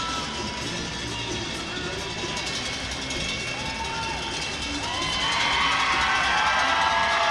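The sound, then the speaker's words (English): A huge arena crowd of Everett fans cheers wildly at a draft pick, a dense, steady roar of voices and shouts that swells even louder about two-thirds of the way through and keeps going. “They are just going nuts.”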